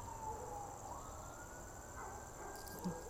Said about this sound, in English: Good gracious, there's a lot of sirens.